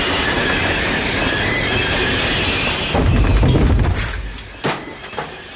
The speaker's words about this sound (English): What is that? That noise? The train! The brakes! Is the train stopping?